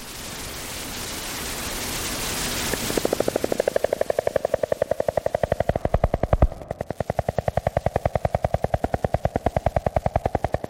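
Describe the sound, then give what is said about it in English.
Columbia spotted frogs call underwater: after a few seconds of hissing water noise, a long, steady train of rapid low knocking pulses runs on without pause, fairly loud and even. “There are these other frogs, Columbia spotted frogs, that don't do things in the conventional way. To hear them, you would have to stick your head, or a microphone, under the water.”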